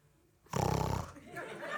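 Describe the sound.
A voice imitates someone clearing their throat: a single loud, raspy, guttural rattle lasting about half a second, with rapid pulsing grit, followed by quieter low murmuring.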